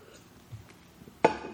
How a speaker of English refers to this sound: Hold on, water drink.